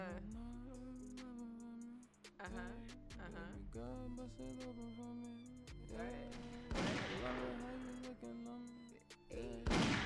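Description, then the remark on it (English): Sharp gunshot sound effects punch through a looping music beat, several loud bangs and a burst of rapid shots near the end, all prominent over sustained synth tones. “Gunshot. Hey. Gun pop.”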